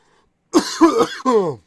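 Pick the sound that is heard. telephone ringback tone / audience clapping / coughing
coughing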